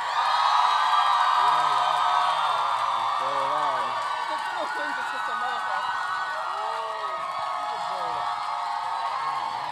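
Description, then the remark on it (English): A crowd cheers loudly and steadily for about ten seconds to vote for a team's candle wax Pop-Tarts to win a round, a dense wash of shouting voices with scattered whoops and yells rising above the roar. “Okay, if you think our candle wax Pop-Tarts deserve to win, cheer now.”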